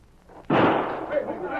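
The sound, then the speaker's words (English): A single loud gunshot cracks out of near-silence, its sharp blast spreading into a long, rumbling tail that lingers and slowly fades. “Didn't get hit, did you, Hawk? That was that one came so close I could hear it whistle. I seen the flash.”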